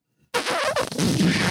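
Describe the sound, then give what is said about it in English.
A voice imitates a loud, rumbling fart, a sustained sputtering blast with a rough, buzzing texture that starts abruptly and continues at steady volume for over a second. “My asshole farts and it goes. Sounds like a Harley.”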